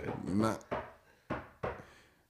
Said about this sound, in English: Now, knock on this wood one time.